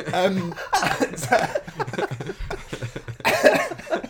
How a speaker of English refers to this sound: He's coughing.